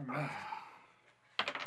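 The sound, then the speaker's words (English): Dice from a Star Wars sabacc game clatter onto a tabletop in a quick burst of sharp rattling clicks near the end, following a softer, fading rustle. “Oop. More dice.”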